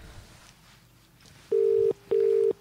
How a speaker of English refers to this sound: Again, it sounds like an English dial tone. It does a bit, doesn't it?